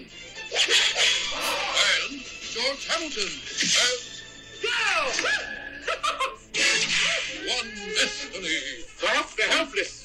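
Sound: whip crack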